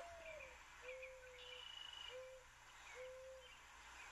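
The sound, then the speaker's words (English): A bird hoots in a slow, evenly spaced series of soft, level calls, about four in all, heard alone against a steady background hiss with no talking. “Well, first of all, you said that it was three who's. It was three who's.”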